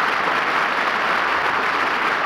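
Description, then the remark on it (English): A crowd applauds steadily, many hands clapping at once into a dense, even wash of sound that stays loud and unbroken throughout, with no voices rising above it. “The sound stages of Hollywood are far away from the applauding audience.”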